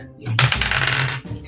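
Dice rolled for a deception check clatter across a hard tabletop, a single busy rattle lasting about a second before settling, with a faint low murmur underneath.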